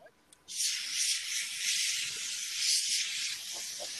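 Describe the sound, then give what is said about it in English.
A compressed air canister sprays at a keyboard in one long, steady hiss lasting several seconds, bright and breathy with slight fluctuations, starting abruptly after a brief quiet moment. “It's that canister of air that you squirt at your keyboard.”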